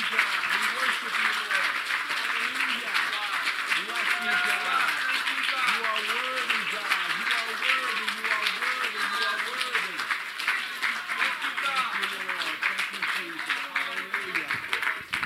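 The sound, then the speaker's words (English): A church audience gives the Lord a clap offering, clapping steadily for about fifteen seconds, a dense, loud wash of applause with many voices calling and exclaiming over it throughout. “Can we just give the Lord a clap offering?”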